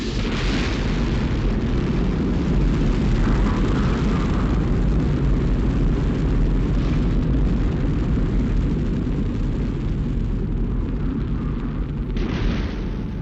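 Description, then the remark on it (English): A continuous, thunderous rocket launch roar fills the whole clip, a dense low rumble with crackling texture and steady loudness, no voices present. “Oh, golly, I remember going through launch, which is an overwhelming experience.”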